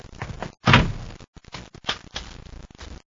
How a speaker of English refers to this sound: Shut the door, Rubens.